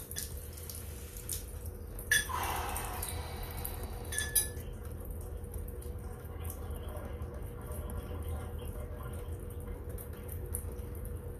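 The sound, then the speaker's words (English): Cold water, about 10 to 12 degrees, runs steadily from a shower for several seconds, with a brief louder splashing burst early on and a few light clinks, then a continuous even rush. “That was a cold shower today. That was about 10 to 12 degrees on my thermometer.”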